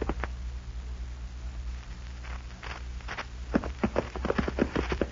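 Horses' hooves clip-clop in a steady, uneven rhythm, several horses ridden together after dark toward the small cattle town of Buffalo Springs, the clopping growing louder and busier toward the end over a low background hum. No one speaks.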